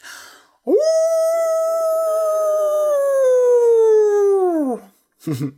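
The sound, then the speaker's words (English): A person imitates a wolf howl with one long, loud, sustained cry that rises sharply, holds steady, then slowly falls away, followed by a brief, breathy vocal sound at the end. “Actually, I am very good at making wolf howls. Listen.”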